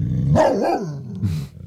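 A large dog lets out a loud growl that rises into a deep bark, followed by a shorter second burst, with no voices present.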